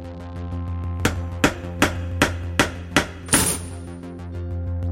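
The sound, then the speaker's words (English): A hammer strikes a metal padlock about seven times in a quick, steady rhythm, each blow sharp, in hilly woods until the padlock falls aside. The last hit rings out metallically over a low, constant background hum. “The padlock fell to the side as the hammer strike echoes receded deep into the hilly woods.”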